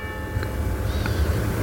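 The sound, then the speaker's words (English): A church bell tolls the hour at 6 o'clock, its tone hanging in the air with steady ringing partials sustained throughout, moderately loud over a low background rumble, with no one speaking. “I hope to give you some enjoyment as a bell rings in the background.”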